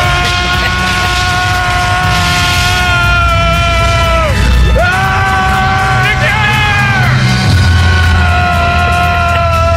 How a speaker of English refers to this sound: And, he kind of gets a little fried here. And it's one of the best screams, I think, ever in film history. Kind of goes like this.